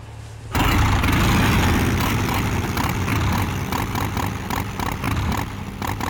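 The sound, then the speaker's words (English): After a brief quiet moment, a motorcycle engine kicks in loud, rumbling steadily with a rough, pulsing growl for several seconds, from Oliver's entrance on a motorcycle in Baki. No voices are heard. “He was on a motorcycle.”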